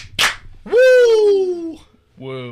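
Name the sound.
two hand claps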